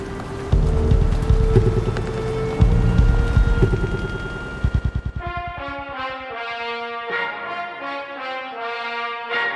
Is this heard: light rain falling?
yes